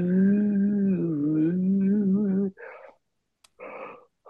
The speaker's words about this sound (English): Oh, fucking hell, he yawned halfway through.